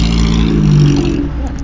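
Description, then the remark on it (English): The engine of an early ex-works MGA sports car that left the factory in 1956 revs loudly at Brooklands. Its deep, throaty drone holds steady before easing off slightly near the end, with no voices over it. “we find Tim surrounded by his beloved MG”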